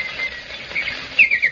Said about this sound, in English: The bird says come.